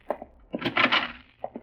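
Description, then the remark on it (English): A door is unlatched and opened: a couple of sharp clicks, a brief whooshing creak as it swings, then two more quick clicks. No one speaks. “Open the door.”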